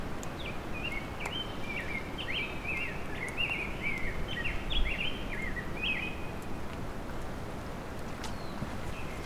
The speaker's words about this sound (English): This is a rose-breasted grosbeak singing. And squeaking.